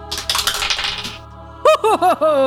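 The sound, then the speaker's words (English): A second or so of dice rolled for initiative clattering and tumbling across a table, a quick rattle of many small hard clicks, followed by four short, wavering pitched tones that rise and dip. “Everyone go ahead and roll for initiative.”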